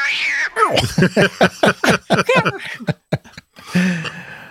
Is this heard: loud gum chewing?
no